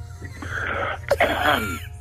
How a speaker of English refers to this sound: Just cough and clear your throat a bit, because that makes me so uncomfortable.